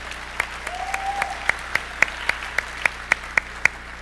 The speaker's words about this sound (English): And I'll decide to overlook the fact that you don't normally applaud for me and move on. No, it's too late. No. I've been in this business a long time. I know what a pity clap is.